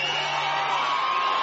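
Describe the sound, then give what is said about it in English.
A large crowd at a rally with former President Donald Trump, on a cold, windy night in Commerce, about 90 minutes northeast of Atlanta, roars and cheers steadily, a dense wash of overlapping shouts and whoops that holds at a loud, even level throughout. “Wow, that's a big crowd of people.”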